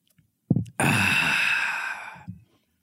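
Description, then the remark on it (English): A drawn-out slurp of coffee lasting over a second, preceded by a soft clink or tap and followed by a faint swallow, with no talking. “I'm actually going to take a sip of my coffee real quick.”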